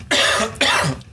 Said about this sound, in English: Coughing into the microphone, which probably isn't the smartest thing to do because it annoys the fuck out of people.